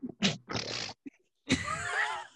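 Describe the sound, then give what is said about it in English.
A person makes a run of grunting, snorting noises with the voice, imitating a pig, in short bursts with a brief gap, ending in a longer wheezy, squealing snort. “Oh, the snorting. Like a pig snort in the middle of it.”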